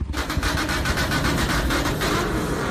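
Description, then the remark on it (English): The engine of a jet vault fires up with a steady roar, a deep rumble and a rapid, rhythmic pulsing throughout, with no voices. “Hey, I know, why don't you fire up the jet vault?”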